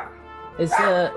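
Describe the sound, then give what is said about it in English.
A person mimics a dog barking, letting out two or three short, loud, voiced yaps after a brief quiet lead-in. “Your dancing is making the dog bark. Dogs are barking in the market.”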